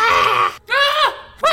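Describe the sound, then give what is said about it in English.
Three loud, strained screams in quick succession, the second bending downward in pitch and the last cut short, raw with no talking around them. “when you're editing this, put in one of your screams.”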